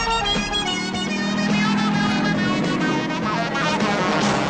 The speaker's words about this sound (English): What a theme tune this was, Starsky and Hutch. That when TV shows are proper theme tunes. It's like a jazz funk workout, this, isn't it?